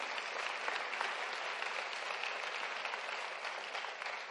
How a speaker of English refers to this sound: Also, we want you to be aware that next Sunday is November 6th, and our classes start. Get a lot of hand clap for these classes.